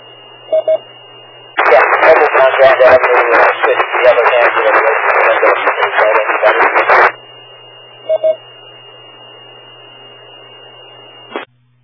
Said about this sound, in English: Okay, whatever you did there, that added some kind of choppy static to the point of, I think you said you switched to another handheld and you were almost unreadable at that point.